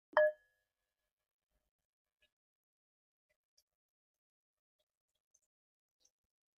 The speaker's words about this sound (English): We'll start with the sound of a bell.